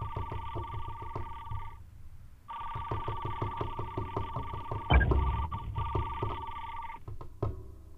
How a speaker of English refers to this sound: It's a Morse code, definitely.